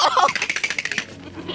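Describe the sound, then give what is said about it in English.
A goat at a goat yoga class bleats once, a loud, quavering cry with a rapid stuttering tremolo that lasts about a second before trailing off into quiet. “Is that Senior's goat yoga?”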